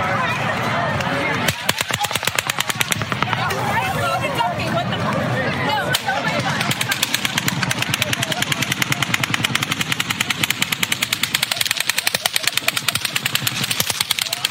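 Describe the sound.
Rapid, sustained bursts of gunfire crack through nearly the whole recording, some shots deeper and muffled, others sharp and crackling, with a murmur of voices beneath the barrage.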